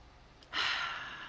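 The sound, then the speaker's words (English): A single deep, breathy rush of air begins after a brief quiet moment and carries on steadily, fairly loud, like a slow intentional deep breath in and out, with no talking. “So, taking intentional deep breaths.”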